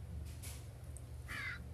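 A single harsh crow caw rings out near the end, short and raspy, over a steady low hum, with a couple of faint rustly noises before it.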